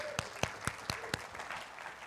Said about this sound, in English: Okay. Hey, there's two. Can we get a clap for that? Three.